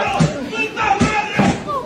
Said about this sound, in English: What's he doing? He's literally stabbing his television with a knife.